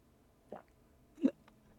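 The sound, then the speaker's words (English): Two short, wet slurps of a drink of water, separated by a brief pause, the second a little louder, with quiet surroundings and no talking. “Well, we're going to do 1 minute of me slurping my drink and nothing else.”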